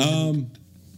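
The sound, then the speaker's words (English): One loud sneeze with a voiced, drawn-out burst lasting under half a second, trailing off into near silence. “Be courteous. Bless you”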